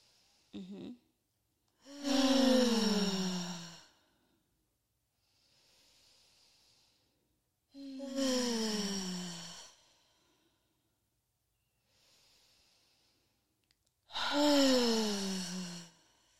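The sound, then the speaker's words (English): A group takes three slow, deep breaths: faint inhales followed by long, loud, sighing exhales at steady intervals, clear, with no talking. “So, okay, what I like for you to do, everybody take 3 deep breaths. Inhale and then exhale. I want you to hear you exhale.”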